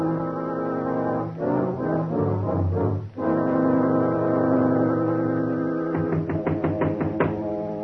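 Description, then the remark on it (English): A foghorn sounds in the fog in a scene of The Shadow radio drama set by a house on a cliff. It blares steadily, deep and droning with strong low harmonics, swelling and shifting in pitch, then breaks into a series of rapid pulsing blasts near the end. No voices are heard. “Oh, that awful foghorn. It gives me the creeps.”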